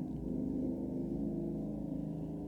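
A motorcycle passing by outside rumbles with a steady, low, buzzing drone that holds at a fairly even loudness throughout, with no one talking.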